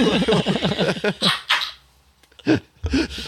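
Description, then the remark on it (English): A person howls like a wolf in a wavering, up-and-down vocal wail, fairly loud, followed by a few short, sharp yelping bursts separated by brief pauses. “Especially when I started to get to howling, bitch.”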